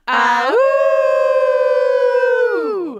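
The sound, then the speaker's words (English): Several people howl together in one long, loud wolf-like howl, rising at the start, holding a steady pitch for a few seconds, then sliding down as it fades out. “Okay, so what's gonna happen is I'm gonna say till next time, and then we'll all howl together.”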